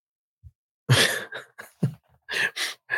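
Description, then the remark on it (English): A loud, sharp sneeze bursts out, followed by a few shorter airy, hissing bursts and sniffs in quick succession. Nobody speaks. “Bless you”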